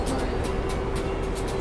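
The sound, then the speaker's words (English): A truck eases past inches from the vehicle's window, close alongside: a steady, loud engine drone with a low humming tone and a faint rhythmic whooshing that recurs roughly every third of a second. “This is genuinely tense, if I'm honest, as this truck eases past us. It's moved a little bit further away from the window now.”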